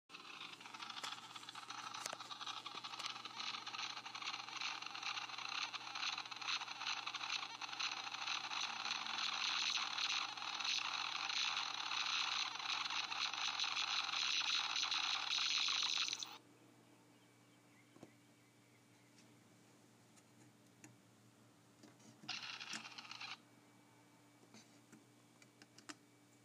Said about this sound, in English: What you just heard is a plastic elephant magnet with batteries in it, and when you push on it, it goes, so it sounds like an elephant. And this was on the refrigerator of my grandma's house in Arkansas when we went out there.